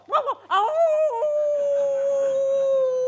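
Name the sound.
dog howling and whimpering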